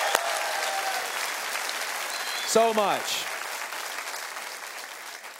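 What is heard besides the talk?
audience applause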